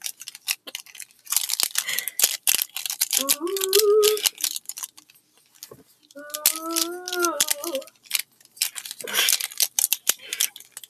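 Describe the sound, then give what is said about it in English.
Busy rummaging through pencils and markers for ASMR, with irregular clicks, rattles and scrapes throughout, broken twice by a child's short sung or hummed vocal sounds. “And now we're going to be doing another ASMR thing where you ruffle around pencils and markers.”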